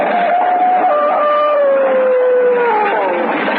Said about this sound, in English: It flashed through the town and up the road leading to the castle, and in the back of it, the devil dogs ran, snarling and howling.